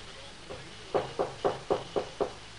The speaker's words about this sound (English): Medical kit in hand, she dismounts, raps on the door of the tiny cabin.